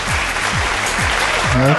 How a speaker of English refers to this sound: Yay! Applauses. Yay. Yay, cheering.